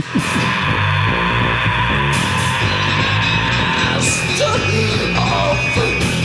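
Loud, dense punk rock with a thick, distorted band sound and harsh screamed vocals cutting through, punctuated by crashing bursts every couple of seconds.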